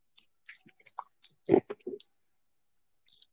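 Sipping water: scattered small wet mouth clicks, then a fuller slurp and swallow in the middle, and a faint click after a short pause. No one speaks.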